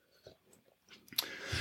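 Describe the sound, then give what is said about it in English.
Soft mouth sounds: a few faint wet clicks, then a louder slurping sip of water and a swallow, with no talking. “Let me take a little sip of water. I'm thirsty.”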